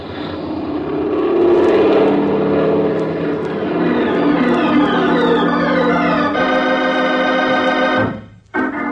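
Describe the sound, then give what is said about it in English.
A small propeller plane's engine roars up to full power as the pilot opens the throttle, its steady droning pitch rising and holding loud for several seconds before abruptly cutting back. “Okay, then I'm going to give it the gun.”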